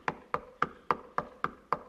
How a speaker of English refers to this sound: He just kept on knocking. He didn't give up.